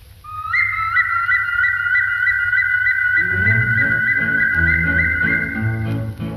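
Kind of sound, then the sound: whistled song melody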